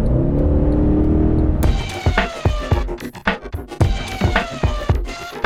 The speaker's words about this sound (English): I've just driven 100 miles in an SLS AMG, and because the roof's off, it makes a wonderful noise.